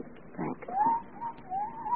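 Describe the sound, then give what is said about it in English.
An owl hoots outside the house, a few soft, wavering calls in quick succession, fairly quiet, with no voices and only a faint background hush. “There was an owl outside the house.”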